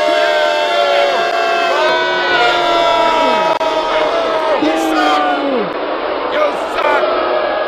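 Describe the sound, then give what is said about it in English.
A crowd boos together in a sustained, loud chorus, many voices overlapping in long, falling jeers that swell and fade over several seconds, booing Giants fans coming into the stadium. “We want a big boo here for when you see these loser Giant fans coming into the stadium.”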